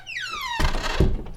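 A closet door swings with a drawn-out, falling hinge squeak, then shuts with a solid thud and a second softer knock as it settles. No voices are heard.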